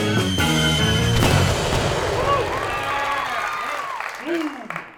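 A dense wash of fireworks: rockets whistle and whine upward while booms and crackling bursts pile up, with a murmuring crowd underneath throughout.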